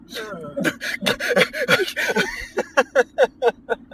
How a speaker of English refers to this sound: I've always found the heavy breathing while you're running to be such a funny effect and such a funny sound effect. I love it so much.